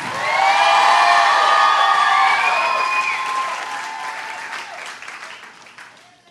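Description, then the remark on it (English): An audience bursts into loud applause with cheering and high whoops, the clapping dense and sustained before gradually thinning and fading over several seconds. “Come on, clap.”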